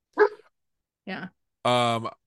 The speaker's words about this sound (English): That was funny that the dog just barked, because I keep seeing pets walk by and I'm like, and I was like, wait, how many are there? There's two, and they're crazy, but yeah, fun.